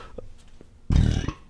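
A single low, rumbling belch erupts after a moment of quiet, lasting about half a second, not aimed directly into the microphone.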